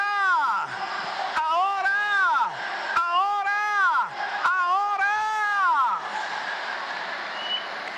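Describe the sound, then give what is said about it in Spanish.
An audience shouts and cheers loudly in response to a preacher's call for someone to shout, many voices overlapping in rising and falling whoops for about six seconds before fading into a murmuring crowd. “Alguien grite.”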